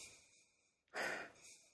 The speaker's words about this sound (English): I'm getting the vanilla. I'm not getting coconut. Okay, actually, the more I sniff, when I take deeper sniffs, I'm getting a little bit of coconut. I am getting the vanilla.